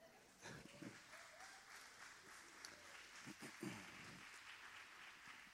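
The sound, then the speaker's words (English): An evening church crowd gives itself a round of applause, clapping steadily for several seconds, a dense wash of overlapping claps with a few louder bursts, and faint voices mixed in beneath the clapping. “You guys should give yourselves a round of applause.”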